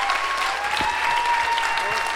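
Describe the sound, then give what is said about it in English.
An audience claps steadily in a dense, continuous round of applause with a faint whistle-like tone running through it and a few low thumps underneath. “So one more round of applause, everybody, for all of my guests.”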